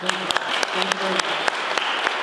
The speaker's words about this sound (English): Big round of applause for Councilor Paul Sharman.